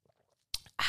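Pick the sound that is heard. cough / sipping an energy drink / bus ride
sipping an energy drink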